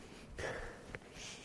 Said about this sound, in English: You just took a whiff of your pit. How was it?